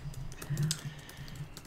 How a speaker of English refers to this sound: I can type in the chat too. Yeah. I'm going to bring back my keyboard here, and even though it looks ridiculous, but.